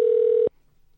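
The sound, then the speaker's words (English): An outgoing phone call's ringing tone: one steady electronic tone, clear and moderately loud, lasting about half a second and then cutting off into near silence. No one speaks. “Answer the freaking phone.”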